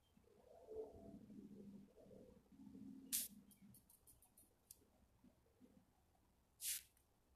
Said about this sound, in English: Yeah, I'm just like listening to the birds chirp. It's kind of peaceful.